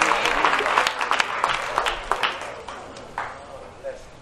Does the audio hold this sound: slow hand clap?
yes